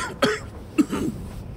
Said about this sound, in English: He coughed several times in a row, followed by more crackling of snot dragging across his forearm.